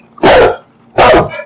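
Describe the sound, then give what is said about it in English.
A big dog barks twice, loud, each bark a deep, booming burst separated by a short pause, with no one talking. “A big scary dog?”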